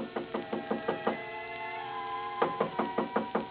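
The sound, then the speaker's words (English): Quick, firm knocking on a hotel room door, a run of about half a dozen raps, a short pause, then another rapid burst. Fairly loud, with no voices. “I had just put down the phone when someone knocked on the door.”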